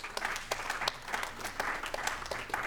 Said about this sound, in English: Praise him for it right now. Somebody clap your hands and praise him. The promise is here.